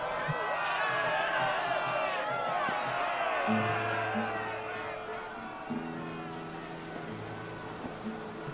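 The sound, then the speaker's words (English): A ship's crew of men roars and shouts together in a dense, overlapping clamor, steady and loud throughout, with a low droning hum running underneath. “Squelching and dripping are the crew roars.”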